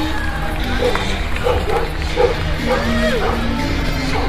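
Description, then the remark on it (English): Several short, high yips and barks come in quick irregular bursts from a dog, Eris, who has just slipped off her leash, over a loud, rumbling outdoor background with indistinct voices. “Now I gotta catch up to the group since the dog just got off the leash.”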